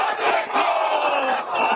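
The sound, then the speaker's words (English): A loud, impromptu haka performed by a group of protesters during a motorway convoy protest: many voices chanting and shouting together in a continuous forceful roar, with sharper accented shouts punctuating the rhythm. “News Hub filmed protesters throwing water at oncoming traffic before an impromptu haka was performed.”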